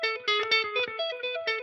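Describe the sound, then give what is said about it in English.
A clean electric guitar picks single notes in a quick, repeating rhythmic pattern, thickened by delay and modulation effects, with a shimmering, echoing tone and no voices. “And all you're doing is picking single notes.”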